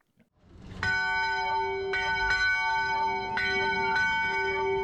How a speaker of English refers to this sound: The bell tower that would chime every morning as White Peaks began to load guests, a tradition that calls all the early risers and morning corduroy addicts to the chair. The tradition plans to live on through the new lift.